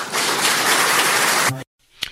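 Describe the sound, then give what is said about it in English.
A crowd applauds a man who has just finished asking a question, in a dense, steady wash of clapping for about a second and a half, then it cuts off abruptly, leaving near silence broken by one brief sharp knock. “He gets applause from the people in the crowd.”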